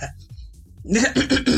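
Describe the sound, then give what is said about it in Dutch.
A person gives a deliberate, exaggerated throat clearing followed by a few short voiced coughs in quick succession, after a quiet stretch, sounding staged rather than natural. “Er hoest gewoon echt niemand. Je hoort niet eens iemand zo doen.”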